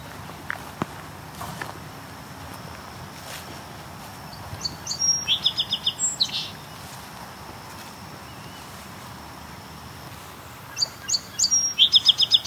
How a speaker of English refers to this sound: It's a song sparrow.